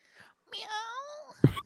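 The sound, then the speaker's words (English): A person imitates a small cat's meow with a single drawn-out, rising-and-falling vocal mew, preceded by a soft breathy sound and followed by a brief low thump. “Meow. All right. That was a very little cat.”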